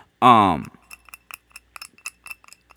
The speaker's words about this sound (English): Man, this shit is sticky as hell. I know you hear these little clinks, right? What I'm doing is banging all the shit that's stuck to my grinder into the holes.